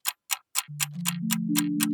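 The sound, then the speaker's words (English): An old-fashioned clock ticks at a brisk, steady pace, about eight crisp ticks, while a low droning tone enters partway through and climbs in steps beneath them. No voices. “So, take an old-fashioned clock and wind on 4 years.”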